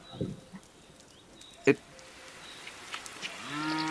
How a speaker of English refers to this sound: Guys, look, let me shine my flashlight over there. Look, it's just cows.